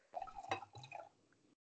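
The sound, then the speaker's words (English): Wine splashes and trickles into a glass for a little over a second, fairly soft, with a brief gurgle before it stops. No one speaks. “I was pouring wine.”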